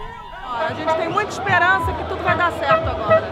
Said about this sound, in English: She strains to speak over the fireworks and the cheers.